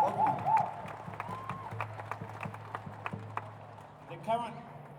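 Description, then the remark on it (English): A rally crowd applauds as the next speaker, a professor, is introduced, in a steady patter of claps that lasts the whole stretch, with voices and a few cheers mixed in beneath, swelling slightly near the end. “Now, are we ready to give him a big round of applause?”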